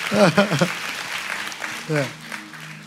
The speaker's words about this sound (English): Woohoo, I'm doing good. Somebody clap for me. Come on.